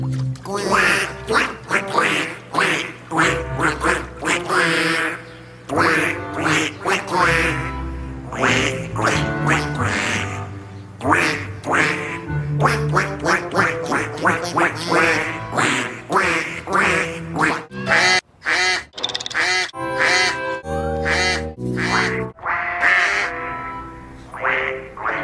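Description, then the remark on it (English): Loud, close duck quacking in a rapid, steady stream, many quacks overlapping in a bouncy rhythm. It continues almost without pause for about twenty-five seconds, with only a brief break near the end. “Then you have That's a Baby Show, which is basically Arthur making fun of DW watching a show for babies. It's called The Love Ducks.”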